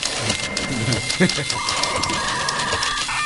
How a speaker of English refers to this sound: It's great, right? It's in stereo. Some more typewriters. Is this news?